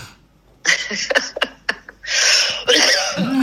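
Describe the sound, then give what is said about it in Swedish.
A person coughs: a rough, harsh burst followed by a few sharp hacks, then a longer, raspy coughing fit that runs to the end. No one speaks. “Den klassiska hosten.”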